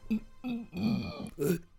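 A run of throaty, voiced burps: four short belches in quick succession, close and fairly loud, each a low guttural rumble with a brief gap before the next.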